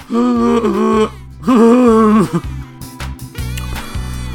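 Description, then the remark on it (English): A voice imitates a vacuum cleaner with loud, sustained droning hums: two long tones that waver and bend in pitch, followed by choppier, sputtering bursts over a low rumble. “I'm vacuuming. This is a vacuum sound like.”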